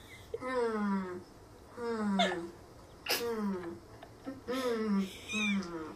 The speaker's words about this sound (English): Sorry, that's my goat. my goat. He's trying to come in.